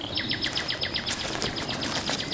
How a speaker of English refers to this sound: So now I've come here to Rutland Water with the sole aim of spending a few days trying to capture the essence of nightingale song by getting my microphones really close to a singing bird under the cover of darkness.